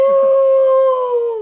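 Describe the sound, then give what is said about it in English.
A woman's voice imitates a whale's moan inside a salon: one loud, sustained, hollow tone held steady for over a second, then sliding down and cutting off, echoing. No other sounds. “She made this, like, whale noise.”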